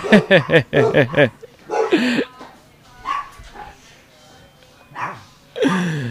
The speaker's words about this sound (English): Shut up, dogs. Just kidding. It's love dogs.